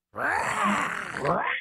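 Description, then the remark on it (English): A person imitates the roar of the Nittany Lion, the mascot at Happy Valley: one loud, sustained, gravelly growl lasting about a second and a half, its pitch wavering and rising again near the end. “I still get headaches from Happy Valley thinking about that stupid Nittany Lion sound.”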